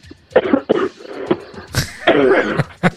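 A loud coughing fit: half a dozen harsh, raspy bursts in quick, uneven succession over a few seconds, with strained breathy sounds between them and no talking.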